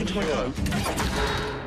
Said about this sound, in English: Why does it bang so much, James? Why do trailers bang all the time? Bang, bang, bang.